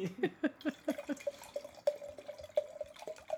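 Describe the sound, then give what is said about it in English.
Wine glugs from a bottle into a glass in quick, rhythmic gulps, the pitch of the splashing rising as the glass fills. Fairly quiet, with no one talking. “let's talk about the color of the wine. Let's talk about... Let me pour me a little bit more.”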